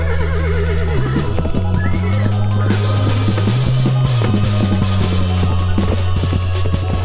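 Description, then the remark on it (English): Horses neigh and whinny wildly and loudly, with shrill wavering cries rising over a dense, continuous background of low droning tones and faint hoof clatter. “Blood, six shooters, bullets whizzing everywhere, horses going crazy, things like that.”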